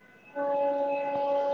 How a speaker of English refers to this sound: Here it comes. I can't even get into what I was saying yet. We're going to have to take another train break.